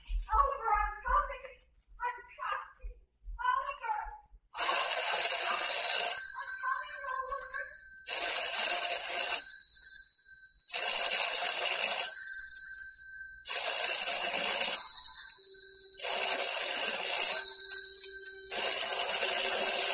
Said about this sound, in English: Telephone ringing, ringing in an empty house.